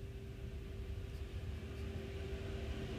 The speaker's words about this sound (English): What's coming by this time? Massive dump truck.